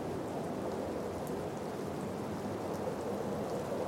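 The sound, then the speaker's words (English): Steady, gentle rain falls from clouds onto a mountaintop, continuously as a soft, even hiss with faint scattered patters, no voices, holding at a constant moderate level throughout. “Now, gentle rain falls from the clouds down onto the mountaintop.”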